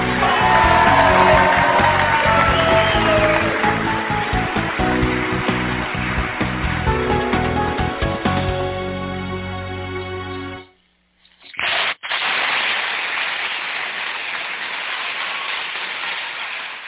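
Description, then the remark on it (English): Loud, sustained crowd applause and cheering with whoops and shouts at the opening of the Bo's Nose Show from Lane County, Oregon, welcoming host Jay Bozovich, broken by a short sudden dropout near the end before the noisy clapping and cheers resume at a steady level. “And extended applause.”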